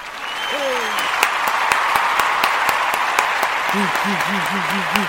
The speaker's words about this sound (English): Come on, let's get a clap here. Hey, I want to hear all my little worshipers. I want to hear all my people just clap their hands today.